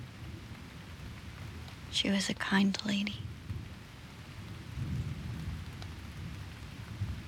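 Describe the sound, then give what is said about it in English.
Steady rain hisses throughout with low, rolling thunder rumbling in the background as lightning flashes outside, while a soft whispered voice speaks briefly near the start. “Lightning flashes outside.”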